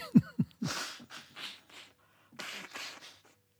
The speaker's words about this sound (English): I'm going to have to just blow my nose for a second.